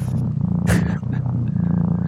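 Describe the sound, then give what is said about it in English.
A cat purrs loudly, a steady low rumbling drone with a pulsing rhythm, briefly interrupted by a short breathy burst in the middle before the purr carries on. “There is something about a cat purring that's very like instantly relaxing.”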